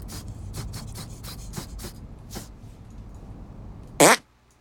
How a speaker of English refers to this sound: Okay, you try. Make your fart detonate behind me. No, you're not forming it right. Imagine you're chewing bubblegum with your butthole.